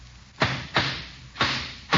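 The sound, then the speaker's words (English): Hammering a nail into a wooden board to build a hut: four sharp, loud strikes land at an uneven pace, each a bright, percussive knock with a brief ringing tail, and no voices between them. “Why don't you hold it and let me hammer the nail?”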